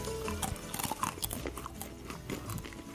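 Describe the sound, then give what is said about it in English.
Dry crunching as a crunchy cracker is bitten and chewed, a rapid series of crisp cracks and crackles lasting a few seconds, with no talking. “Very crunchy.”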